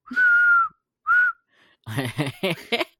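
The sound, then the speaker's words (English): Two clear whistled notes from a person, a longer steady tone followed by a short one, fairly loud, then someone starts talking right after. “You just gotta blow air. I'm just like, yeah. ASMR, ASMR. You're like whistles deeply.”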